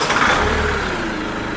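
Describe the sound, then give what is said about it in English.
A community bus engine turns over and settles into a steady, rumbling idle, loud, with a dense mid-range drone and no voices. “So let's board the bus and hear from our passengers.”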